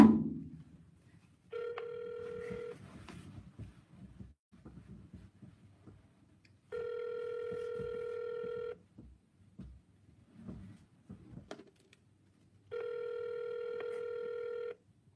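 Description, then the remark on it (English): A phone line ringback tone on an outgoing call rings three times. Each ring is a steady, buzzy, mid-pitched burst lasting about two seconds, with roughly four-second gaps, over a faint low rustling background. “Yes, I was calling.”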